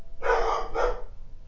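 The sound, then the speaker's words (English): Two quick, loud dog barks in close succession, harsh and mid-pitched, with a low background hum and no talking. “And now dogs are barking.”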